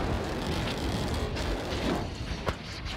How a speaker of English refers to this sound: I know you want to see the explosion, but unfortunately the podcast isn't the most explosion-friendly format. I can let you listen to it though if you want.